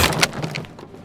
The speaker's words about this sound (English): Sounded like the door just exploded.